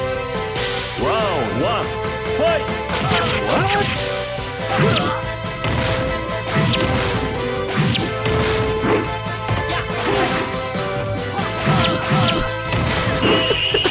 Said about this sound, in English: Is that a man fighting his own horse? Perfect. As well be. Why is there infomercial music playing in the background of that fighting?